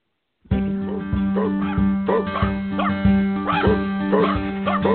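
A dog barks in a quick, steady series of loud yaps over a sustained tonal background like music, with no one talking.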